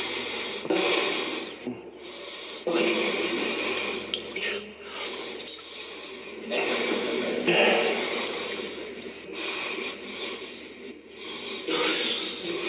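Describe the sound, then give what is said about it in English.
A compilation of Donald Trump's repeated nasal sniffs taken from a speech: a string of loud sniffs, one breathy burst after another with short gaps between, like many sniffles strung together back to back. “This is Donald Trump sniffling.”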